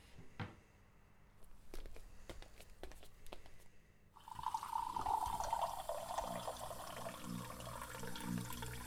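A few sharp clicks and knocks, then drinking water runs steadily into a container for several seconds, fairly loud, with a slight rising tone as it fills.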